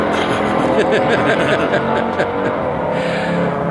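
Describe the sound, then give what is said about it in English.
A car engine roars steadily outdoors at a church tailgating event, a vehicle speeding along the road, with people talking underneath the constant traffic noise. “We are outdoors at church tailgating, and of course there's traffic.”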